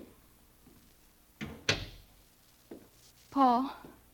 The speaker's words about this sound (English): I opened the door for him.